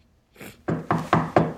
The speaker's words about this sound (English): Oh, no. Who's there? It's me. Oh. Hi. Why do you always knock on your own door? Well, you might be naked.